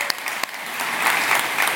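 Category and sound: crowd, audience applause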